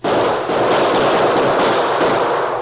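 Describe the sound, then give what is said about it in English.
A dense, continuous barrage of gunfire as the Lone Ranger and Tonto return fire at unknown assailants, many shots crackling together with no pause, loud and sustained like two sides firing at once. “Crouched on either side of Pop Hendricks and the photographer, the Lone Ranger and Tonto returned the deadly gunfire of their unknown assailants.”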